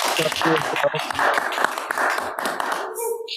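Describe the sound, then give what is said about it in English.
An audience claps steadily in a dense, crackling wash of applause that holds for a few seconds before tapering off, with murmuring voices mixed underneath. “Again, the clapping.”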